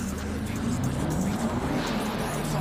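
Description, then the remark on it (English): A car engine revs and rumbles, a steady low drone with small swells in pitch that carries on unbroken for a few seconds. “Vroom, vroom.”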